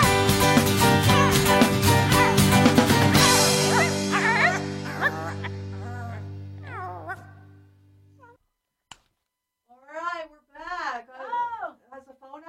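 A loud rock song plays its final bars and lands on a long sustained chord that rings out and fades, followed by a short pause and then brief, higher-pitched vocal sounds.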